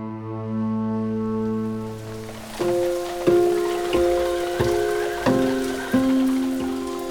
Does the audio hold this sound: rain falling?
yes